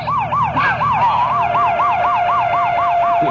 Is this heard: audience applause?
no